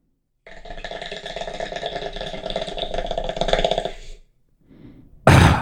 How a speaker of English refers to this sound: Wait, here's my impression of Adolf Hitler hitting the bong. Mm-hmm. Could I get a little sound effect? Yeah, we got it.